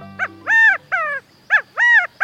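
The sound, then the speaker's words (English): A California quail, a small ground bird, calls twice, each a loud three-note phrase: a short clipped note, then a longer drawn-out nasal note and a falling final one, ringing clearly with no voices. “Does this bird seem to be saying, Chicago, Chicago? Don't be misled. This small ground bird, the California quail, is strictly a bird of the far west.”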